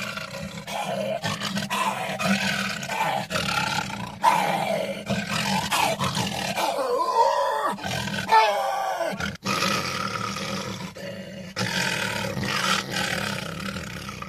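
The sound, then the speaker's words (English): Voice actor Frank Welker imitates a lion's roar, growling loudly and continuously into a garbage can that gives each rumbling bellow a booming, echoey resonance, with brief pauses between roars. “growling into a garbage can”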